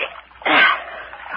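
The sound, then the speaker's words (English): Water splashes and sloshes as a pole pushes a boat through dark water with cypress knees and snags of fallen timber, in a place called Dismal; one fuller swell of splashing in the middle between softer dripping, churning noise, with no voices. “alternately poling and fending the boat from snags of fallen timber.”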